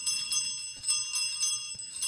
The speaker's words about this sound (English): Was that Jingle Bells?